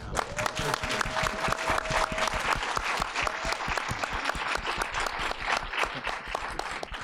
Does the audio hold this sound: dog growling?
no